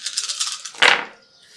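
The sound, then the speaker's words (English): Seven black dice rattle in a cup for a moment in a quick, clicky shaking rhythm, then spill out with a sharp clatter that quickly fades. “Yep, so that's 7 black dice.”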